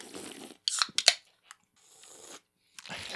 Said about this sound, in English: I messed up slurping and I, almost spit it out. I messed up slurping.